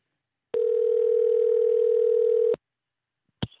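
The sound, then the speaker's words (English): A single two-second telephone ringback tone while calling someone back, a steady electronic hum on the line, stops abruptly and is followed by silence and a faint click. No one speaks. “Let's call her back 3 times.”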